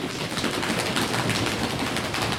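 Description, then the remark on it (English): A sustained drum roll of rapid, dense, rattling hits at a steady loud level, running unbroken for a couple of seconds with no voices over it. “Shall we do another drum roll, please?”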